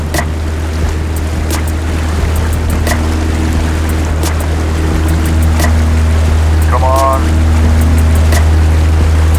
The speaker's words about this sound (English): Come on, baby. We leave the water and start to fly. All right. Never doubted it for a second. The plane's pontoons just seem to clear the tall firs and cedars at the end of the lake.